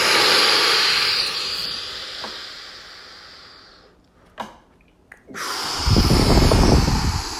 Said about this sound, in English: Deep breath in.